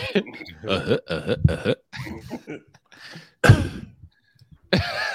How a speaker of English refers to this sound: Sound like a hiccup.